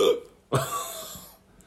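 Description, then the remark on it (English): A single abrupt hiccup from a person just after taking a first sip of a hazy beer, a sharp gulping onset that trails off over about a second, with no talking around it. “Got a little hiccup there.”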